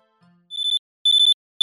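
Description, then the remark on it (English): A disabled fuse box's alarm sounds in loud, high-pitched electronic chirps, rapid clusters of four or five beeps separated by short pauses, with another burst starting at the end. No one speaks. “Well, if we listen carefully, we might hear the alarm from the disabled fuse box.”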